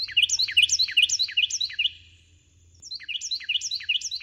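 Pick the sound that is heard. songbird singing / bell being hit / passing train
songbird singing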